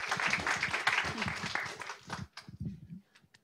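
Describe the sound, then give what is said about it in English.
As a session wraps up, an audience breaks into a dense, steady round of applause that fills the first two seconds, then quickly dies away as a single voice begins speaking. “How about a round of applause first?”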